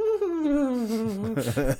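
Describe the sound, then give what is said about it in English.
A person vocally imitates the odd noise their female dog just made while dreaming: a long, high whine that slowly slides downward, then breaks into a few short, wavering whimpers at the end. “My dog just made a really weird noise. she's having a dream over there, and she just went to...”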